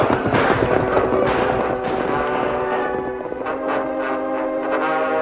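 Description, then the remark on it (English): The hooves of a ridden white horse gallop away in a steady, rapid rhythm, loud at first and thinning out, layered over a dense, sustained tonal backdrop with no one talking. “Let them see us and this white horse I'm riding.”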